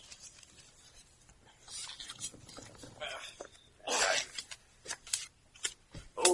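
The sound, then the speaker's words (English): Crisp papery riffling and rustling in a series of short bursts as a deck of playing cards is shuffled for the next round of a game, with brief soft taps between them; no one speaks. “Okay, next round. Newly shuffled.”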